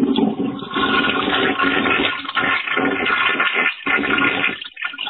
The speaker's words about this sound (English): Oh, that's a good toilet flush.